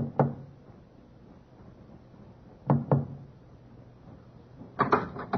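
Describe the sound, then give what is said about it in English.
At 2:30 (five bells) aboard a ship, a first officer knocks discreetly on the wooden door of cabin B-24, a watchman at his elbow: one rap, a pause, a quick double rap, then a final short cluster of taps, subdued against a quiet background hum. “First Officer Forsyth, with Watchman Petrie at his elbow, knocked discreetly on the door to B-24.”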